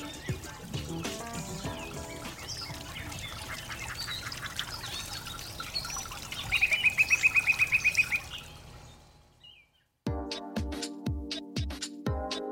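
Recorded birdsong fills a busy outdoor scene, including a rapid run of high chirps, then fades to silence before rhythmic music with steady beats begins.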